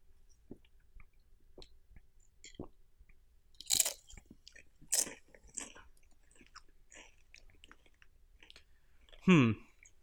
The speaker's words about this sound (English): All right, one more sip here till I formulate a little bit of an opinion.